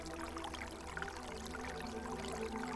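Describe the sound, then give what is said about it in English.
Fountain water gurgles and trickles steadily throughout, a soft, continuous bubbling wash with no pauses, sitting over a faint low hum. “The water from the fountain nearby begins to gurgle.”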